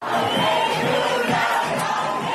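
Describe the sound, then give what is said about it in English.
Thousands of people cheering in the streets of Machane Yehuda, the biggest marketplace in Jerusalem, Israel, on the 70th anniversary of Israel's independence. A dense, steady roar of voices with rising shouts blended together, loud and continuous throughout with no single voice standing out. “Okay, literally thousands of people cheering in the streets of Machane Yehuda.”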